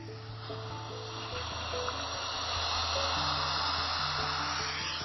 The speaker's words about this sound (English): If I'm ever feeling stressed out, I turn on my Apple Music playlist called Ocean Sounds.